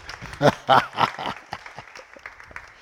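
An audience applauds as a guest comes up, the clapping loudest at first with a few voices calling out over it, then settling into a softer, steady patter of hands that carries on to the end.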